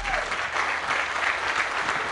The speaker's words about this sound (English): A Minneapolis police officer is applauded as he leaves North Memorial Hospital early Saturday morning after receiving treatment for a gunshot wound suffered on duty.